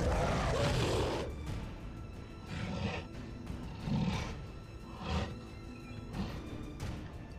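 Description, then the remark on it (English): A giant cursed monkey beast in a video game, in a cave, roars loudly, followed by several shorter growling bursts at a steady rhythm over a low rumbling background, with no talking. “That's very brave of you to say something like that to a giant cursed monkey.”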